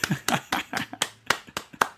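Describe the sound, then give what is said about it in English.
A round of applause: steady, evenly spaced hand claps, about four per second, fairly loud, with no one speaking over them. “Round of applause. Round of applause for that.”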